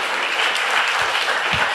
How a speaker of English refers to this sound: I want y'all to also give a round of applause to DJ Head, who definitely added the sound.